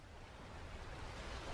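ocean waves

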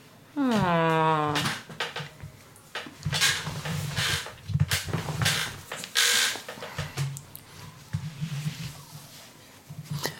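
door opening

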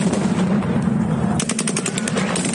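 gunfire

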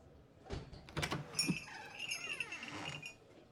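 door being opened

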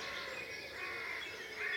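blackbird singing

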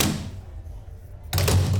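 drawer sliding open

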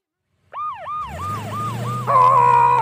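toy fire truck siren

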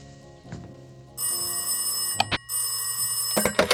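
telephone bell ringing

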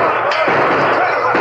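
gunshots in radio drama

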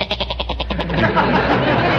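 goat bleating

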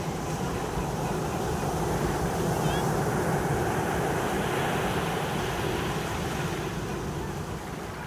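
ocean waves

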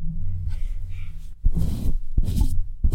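dog sniffing the microphone

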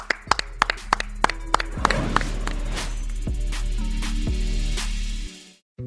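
hand clapping

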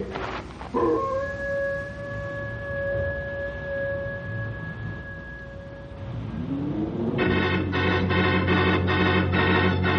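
wolves howling

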